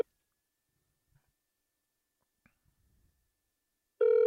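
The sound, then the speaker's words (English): A few faint clicks in near silence, then a loud, steady electronic phone tone suddenly starts and holds as a phone call to a man rings through. No one speaks. “Let's see if I can get him on the phone.”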